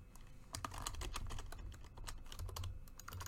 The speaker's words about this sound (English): I can type.